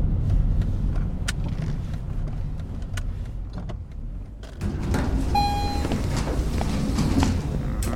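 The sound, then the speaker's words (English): A car turn signal clicks in steady, regularly spaced ticks over the low rumble of an idling car interior, with a brief soft chime partway through and no talking. “No, it's nothing says awkward silence like the turn of a signal. A turn signal.”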